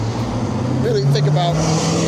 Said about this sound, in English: Those cars are always buggy. He only going like 35, but it sounds like he's doing 50. What, the Chargers? Yeah, with them shortened-ass mufflers and shit. Or them chopped-off mufflers to sound louder.